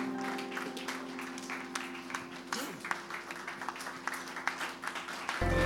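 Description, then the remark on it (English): An audience at the Keeper's House Chapel International in Madina Estate, Accra, rises and claps hands to bless the Lord, a steady, overlapping stream of sharp claps running throughout over a low sustained hum, with a brief raised voice partway through. “Shall we rise to our feet, clap your hands, and bless the Lord?”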